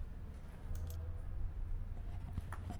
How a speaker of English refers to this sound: Okay, so it's a rainy afternoon. I'm standing out on the street, on 2nd Street to be specific, in beautiful downtown Revelstoke